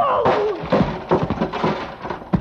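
A heavy steel pulley block, swung at a man, slams into another man's body dead center with a dull, meaty thunk; he falls like a bag of sand, followed by a scatter of heavy thuds and knocks, as if something crashes and tumbles.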